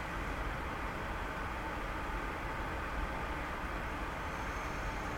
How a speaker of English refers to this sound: So I want you to close your eyes, and I want you to listen to the air that's coming through the vents. Listen to that humming sound.